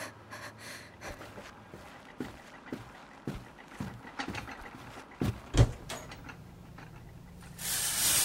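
Water pipes give off scattered creaks and knocks, one sharper than the rest midway, before a steady hissing rush of shower water starts at the end. No one speaks.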